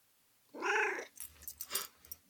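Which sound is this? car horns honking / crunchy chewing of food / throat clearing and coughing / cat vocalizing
cat vocalizing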